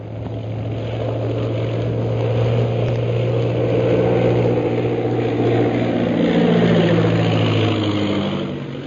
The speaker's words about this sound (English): Following the example set by the leaders, the rest of the 15 planes of the Purple Triangle Air Squadron turn back from the ordered flight and land at the camp.